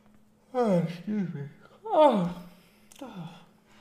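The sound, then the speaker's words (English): A person yawns aloud, a drawn-out voiced yawn with sliding, falling pitch, broken into a few breathy stretches over several seconds. “Excuse me. One of the symptoms is yawning.”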